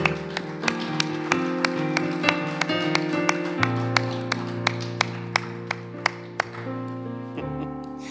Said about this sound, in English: Just amen. Give the Lord a clap. Dale un fuerte aplauso al Señor.